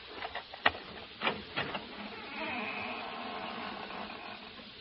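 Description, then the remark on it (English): A few sharp clicks and knocks from a latch give way to a drawn-out, scratchy creak as the hinge of a house's front door squeaks open, moderately loud, with no voices. “Well, we've opened the front door now. Maybe you heard the hinge squeak a little.”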